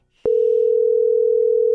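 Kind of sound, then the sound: signal or alarm, phone call ringback tone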